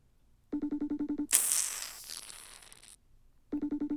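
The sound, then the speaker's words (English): An outgoing phone call rings in a steady pulsing tone, repeating rapidly, then a brief burst of noisy rustle before the ringing resumes, clear, with no one answering at 10:30 local time on the other end. “Answer the fucking phone, bro. It's only 10:30 there. You're not asleep.”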